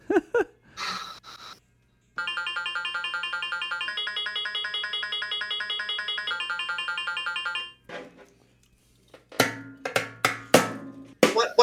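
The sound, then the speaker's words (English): A marimba chime from a small keyboard plays a quick, evenly pulsed run of bright, repeating notes for about five seconds, framed by brief vocal sounds before and after. “You trying to get that little chime? That's called marimba.”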